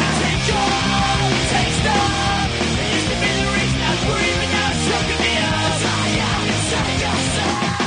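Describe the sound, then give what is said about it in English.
Loud, dense rock music with harsh, screamed vocals shouting over distorted guitars and pounding drums, sustained and intense throughout without any break. “Okay, this is pretty, pretty yelly. Have you identified what they're yelling?”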